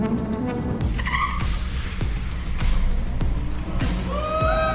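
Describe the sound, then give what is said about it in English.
A Cybertruck Tri-Motor electric pickup, while towing a 911, drag racing a 911 sports car: a loud, steady vehicle roar with sharp rising whines and short tire squeals, punctuated by regular thumping beats, no voices. “So the Cybertruck, and this is the Tri-Motor, if I'm not mistaken, while pulling a 911, beat a 911 in a drag race.”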